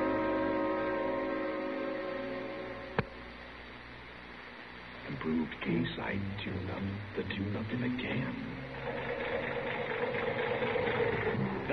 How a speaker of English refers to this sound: Say, that engine of yours sounds like real tired iron.